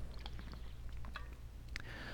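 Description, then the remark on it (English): Quiet mouth sounds of someone sipping water: a few soft wet clicks and a gulp over a low steady hum, with no talking. “Take a sip of water.”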